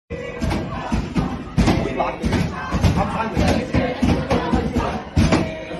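Protesters' fists pound repeatedly on the locked doors of a library in an uneven, forceful rhythm, loud, while a noisy crowd outside shouts and clamors underneath the blows, trying to get in.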